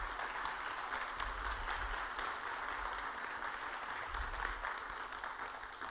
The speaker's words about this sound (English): Can we say goodbye with a round of applause?